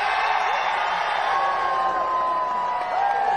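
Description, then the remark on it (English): A large crowd roars with sustained cheering and applause at a rally, a dense, steady wall of clapping and shouting voices with occasional whoops rising above it. “So just, I mean, when you listen to that, just listen to all of the applause.”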